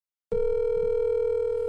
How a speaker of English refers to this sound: We're going to make sure that to be as accurate as possible, we're going to let the phone ring all the way through. We're not going to ignore it, but I will start the timer from the moment the phone starts to ring.